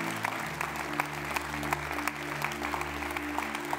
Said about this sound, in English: But if you are a teenager, and I'd like you to come down to the front right here. Can we clap for them as they come?